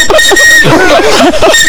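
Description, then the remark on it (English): A shrill, steady whistle blown by a grown man sounds almost continuously for under two seconds, loud, while wavering voices laugh or shriek excitedly over it. “It's a whistle.”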